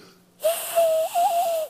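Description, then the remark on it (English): A breathy cupped-hands whistle imitating a dove call: one low, hollow, steady hoot lasting just over a second, with a brief wavering dip midway, heard alone with no talking. “I don't know if you've ever done this before, but if you do it right, if you hold your hands just right, you can do a little kind of a whistle.”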